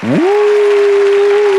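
Loud, steady burst of applause-like clapping noise, with a single held whooping cheer rising at the start and sustained at an even pitch over it.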